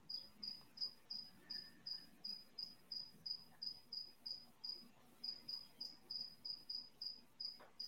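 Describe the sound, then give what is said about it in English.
Crickets chirp in the background in a steady, rapid rhythm, roughly three high-pitched pulses per second, continuing throughout. The sound is quiet, with no voices present. “The ominous crickets in the background.”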